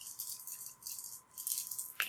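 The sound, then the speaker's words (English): Four dice rattle and clatter continuously in bursts of bright, high-pitched clicking for about two seconds as they are rolled in a game of Technoir, aiming for 4 or better, ending with a sharper knock as they settle on 6, 5, 4 and 4. No voices are heard. “Roll a 4 or better, and I'm using, so detect, which is 2, then the head jack and the cyber eye, so I'm rolling 4 dice, and I'm trying to get 4 or better.”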